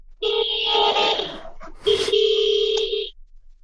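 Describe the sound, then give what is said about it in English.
A car horn honks twice, each a steady, buzzy blast lasting about a second with a short gap between them, fairly loud with no voices present. “Why is he honking? Who's he honking at?”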